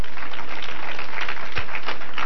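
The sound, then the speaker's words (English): A church crowd claps hands to God in a dense, steady wash of overlapping claps, loud and continuous for a couple of seconds with no voices. “Let's clap hands to God right now.”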